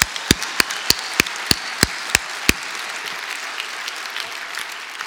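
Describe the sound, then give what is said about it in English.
An audience claps at the speaker's prompt, a quick run of about eight sharp, evenly spaced hand claps ringing out over a steady wash of noise, then the clapping stops and only the low background hiss remains. “All right, let's first clap it up, because that's the most hands I've ever seen.”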